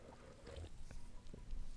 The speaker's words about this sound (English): Or like when someone, here, let me show you how I swallow. I feel like I'm like kind of blowing the speaker. Let me show you how I swallow. Ready?